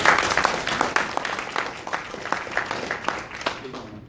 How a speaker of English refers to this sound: Who wants to come up here and tell me their revolution? Come on, young brother. You're answering that question. What's your revolution? Give him a hand clap.